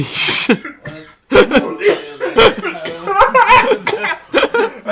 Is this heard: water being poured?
no